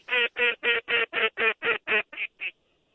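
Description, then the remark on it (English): A duck quacks about ten times in a quick, steady series, loud, with the last few quacks growing softer before the sound stops. “Every time you call, the birds come.”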